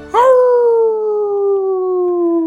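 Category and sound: sound effect, wolf howl sound effect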